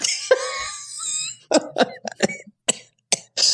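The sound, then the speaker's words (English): A rough, wheezy intake of breath followed by a fit of harsh coughing, several sharp bursts in an uneven rhythm with brief pauses between, loud and alone without speech. “Excuse me, that set off the cough.”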